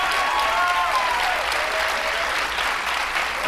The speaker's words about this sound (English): Yes. To the applause of the crowd.